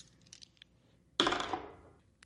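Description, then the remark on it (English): A few soft clicks, then dice rolled for a dexterity saving throw in a tabletop role-playing game clatter sharply onto a hard tabletop and rattle briefly before settling, fairly loud, with no voices. “Can you make me a dexterity saving throw? Sure. Let me get my dice”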